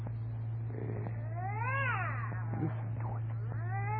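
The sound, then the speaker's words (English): A cat behind a door yowls in long, wavering, drawn-out cries, one rising and falling howl followed by shorter wails, sounding muffled as if through a barrier, over a steady low hum with no talking. “And I'm telling you, that cat, you got an ill violating the city ordinance. Now, if you don't make it shut up, disturbing me,”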